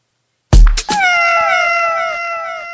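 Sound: domestic cat meowing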